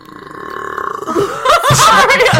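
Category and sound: human body sound, loud burp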